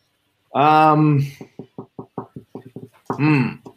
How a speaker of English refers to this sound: What's that? You're knocking. I said, who is it?